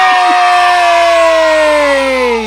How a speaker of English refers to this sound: Oh, why don't we do the suspense noise too?